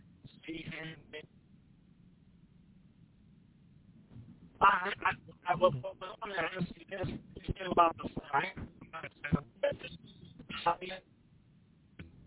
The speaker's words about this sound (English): Yeah, your phone breaking up, bro. We can barely hear you.